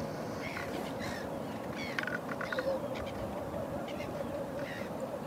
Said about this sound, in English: It's so peaceful here. Just the sound of the birds. The sound of the seals.